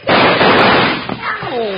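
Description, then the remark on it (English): A loud gunshot blast, fired so that it just misses a man's big toe, bursts out and its harsh noise rings on for about a second before fading, followed by a brief voiced exclamation. “I wouldn't be so free with my guns if I were you,”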